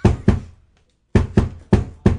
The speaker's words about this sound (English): Could you use your swole legs to hit the desk in a rhythm that, you know, replicates a certain movie theme?